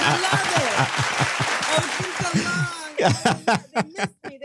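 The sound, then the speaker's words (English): A burst of applause sound effect played on the Working Artist Project show for a guest: dense, steady crowd clapping for about three seconds with voices laughing over it, then the clapping cuts off and a person speaks. “It's something about applause for us artists.”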